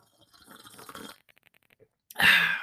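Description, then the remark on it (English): Someone sips tea: a soft, airy slurp followed by a few small wet clicks of swallowing, then a sudden loud breathy hiss at the end. “All right, I'm going to take a sip of some of my nice tea.”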